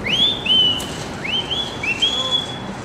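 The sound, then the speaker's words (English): A person whistles a loud calling signal to their mother at the window of the home where they grew up, on Avenue C in New York's Lower East Side: a rising swoop into a held note, repeated several times in quick succession, over faint outdoor street noise with no talking. “I bet you if I whistle, she'll come out the window.”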